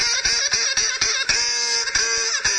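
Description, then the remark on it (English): A loud, rapid run of nasal duck quacks used as a sound effect for the Nuclear Regulatory Commission Duck segment, repeating back to back with hardly a pause for a couple of seconds, clear with no voices. “Now it's time for the Nuclear Regulatory Commission Duck!”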